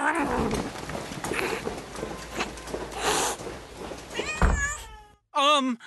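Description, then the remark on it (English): After a busy, jumbled stretch of noise, cats break into loud, wavering meows and yowls, the last drawn-out cry standing alone after a brief silence. “those cats. I think they were eating her.”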